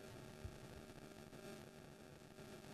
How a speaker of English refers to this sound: Do you guys have static as well?